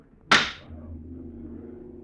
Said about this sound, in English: Listen. The drone of lawmakers before the president of the Senate raps the gavel for silence.